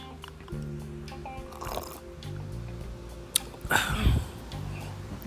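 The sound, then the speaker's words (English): A soft slurping sip of a drink, then a louder swallow-like gulp a couple of seconds later, over a steady low electrical hum with no talking. “I'm gonna take a sip.”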